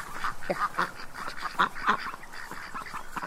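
Several ducks by the water, about to be fed, quack over one another in a steady, overlapping chatter, with harsh nasal calls rising and falling at moderate loudness and no voices speaking.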